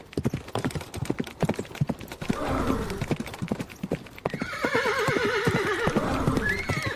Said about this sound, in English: OK, you get a point if you said horses, but it was an easy point.